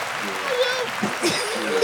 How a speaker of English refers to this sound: Where am I going to put the claps when this is a podcast? You just hit the claps now.